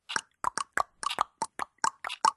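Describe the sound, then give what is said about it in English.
Several voices imitate a ticking clock with quick mouth clicks and tongue pops, about a dozen sharp, hollow ticks in a loose, slightly uneven rhythm, with no talking. “You guys make clock sounds really quick.”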